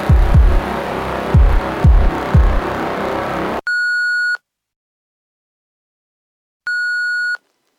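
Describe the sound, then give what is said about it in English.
An answering machine beep: after a few seconds of rough, thumping noise, a steady electronic tone sounds twice, each lasting under a second, separated by about two seconds of silence. “I'm not here to take your call right now, so please leave a message after the beep and I'll get back to you as soon as I can.”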